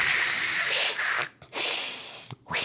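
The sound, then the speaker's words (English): A person imitates an alligator's hiss with a long, breathy, high-pitched exhale, then two shorter hissing bursts after brief pauses, with no words spoken. “I don't know what noise gators make. They hiss.”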